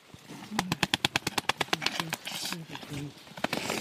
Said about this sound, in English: That's a grumpy bird.